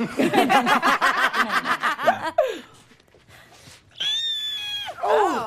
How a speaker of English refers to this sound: Oh! Yes! A lot of heavy breathing. That always makes it better. I don't remember that much heavy breathing.